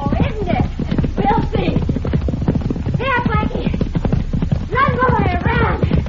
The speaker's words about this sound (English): Is that a horse race, senorita?